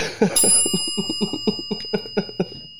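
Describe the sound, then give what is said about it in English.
Two bells ring out together in harmony, a bright strike followed by long, sustained overlapping tones, while a quick run of short, low, rhythmic bursts pulses underneath. “Our bells are in harmony, everyone. We kind of accidentally got a harmonic bell thing going on.”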